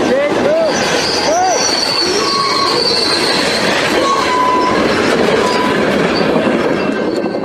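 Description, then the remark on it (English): Cars of a westbound Canadian National freight train carrying paper roll steadily along the rails near Highway 15 and John Scott Road with a loud, continuous rumble, while high metallic wheel squeals rise and fade several times throughout. “An alarming sight near Highway 15 and John Scott Road Saturday afternoon, as the CN Trail was traveling westbound when two cars near the back derailed.”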